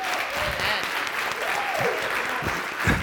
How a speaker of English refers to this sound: Give God a hand clap this morning.